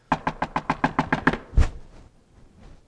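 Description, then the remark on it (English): A rapid series of about ten sharp, loud knocks on a door in a fast, even rhythm, ending with one heavier thump, then quiet. “when you go knock on the door, this is what I want you to do”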